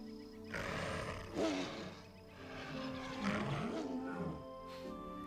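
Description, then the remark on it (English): A loud, drawn-out roar from the Red Lion robot lion fills the whole stretch, swelling twice with a rough, growling texture and a faint metallic electronic hum underneath, with no talking. “Red Lion, speak to me.”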